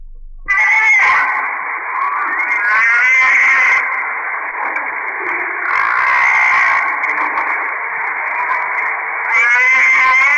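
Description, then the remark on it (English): Humpback whale song recorded underwater: long, wavering moans and warbling cries overlap continuously for about ten seconds, loud and steady, with brighter squealing bursts rising above the drawn-out tones. “These are underwater recordings of the humpback whale, now almost extinct.”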